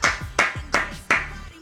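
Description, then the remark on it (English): Four loud, sharp hand claps in a steady, evenly spaced rhythm, each ringing out with a noticeable echo, with no talking. “I'm just trying to do more vibrant clapping.”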